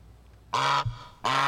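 Two loud, brassy goose honks played as a sound effect for the Goose Island Beer Company, each lasting about a quarter second with a short pause between them, and no voices in the background.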